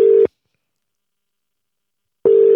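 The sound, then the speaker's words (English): A steady electronic telephone busy tone sounds in two short bursts with about two seconds of silence between them. It is clear and fairly loud, with no voices. “I mean, he's not going to pick the phone up.”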